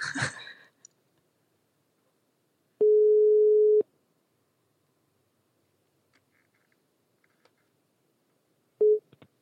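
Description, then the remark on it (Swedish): A phone's ringback tone sounds while a call connects: one steady one-second beep, a long silent gap, then the next beep starting just as it cuts off. A brief rustle opens. “Snälla, svara inte.”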